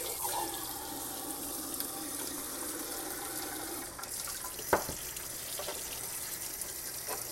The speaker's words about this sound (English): I'm sorry, let me focus on this because apparently it takes a lot of my brain power to fill these cokes with water.